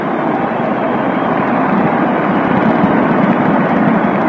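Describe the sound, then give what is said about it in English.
A large baseball stadium crowd of Dodger and Yankee fans applauds pitcher Whitlow Wyatt, a dense, steady wash of clapping and cheering that holds at an even, loud level for the full few seconds, with no voices heard above it. “Whitlow Wyatt gets a nice hand from Dodger fans and Yankee fans alike.”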